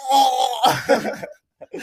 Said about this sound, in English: sorry, I had a cough. Wow, I have a cough. Utah. I'm just choking.